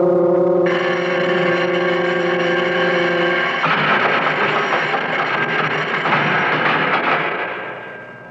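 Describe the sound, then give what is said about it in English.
A loud, harsh prison bell rings continuously, starting as a steady metallic tone that turns into a rattling, clattering clang before fading out at the end. No voices are heard. “The bell. It jars you, huh? Well, it's awful loud.”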